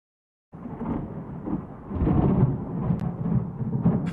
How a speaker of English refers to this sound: Here's the thing. We got the thunder and the lightning right now. But we don't have the rain. I ran out and threw the top on the Jeep, but it was just a small sprinkling of rain.